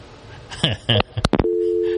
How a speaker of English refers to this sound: For some reason, they got my hopes up with a phone ringing.